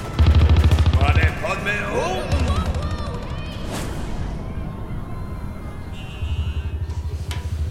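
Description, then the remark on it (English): Rapid, loud bursts of machine gun fire rattle in three stretches amid a dense, chaotic din of battle, with voices shouting faintly underneath. “I don't know how much longer our boys can keep the gunfire off us.”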